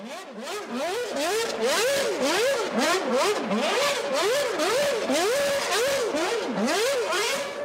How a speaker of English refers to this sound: I want to play this because I want everybody to hear the sound of a 2011 V8 revving to 18,000 RPMs, because it crank is awesome.